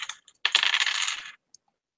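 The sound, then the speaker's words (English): Dice clatter and tumble across a hard tabletop in a quick burst of rattling clicks, settling with a final small tap; fairly loud, no voices. “Oh, my dice are killing me tonight.”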